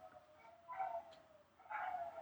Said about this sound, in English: I realize my dogs are howling. Do not bother pointing that out. But, Yes, I'm leaving that in the episode.